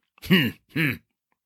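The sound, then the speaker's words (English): Two short, gruff snorting throat-clearing grunts in quick succession, fairly loud, made by a voice with no words spoken around them. “Then why do you snort like this, like the donkey that is sniffing the balls of Sanchos El Pavlos?”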